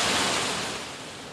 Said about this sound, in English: The rain, she's coming down. Let me just close that door because it's mostly coming from the breezeway.